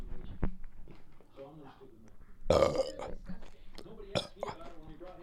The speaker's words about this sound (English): I'm burping and eating at the same time.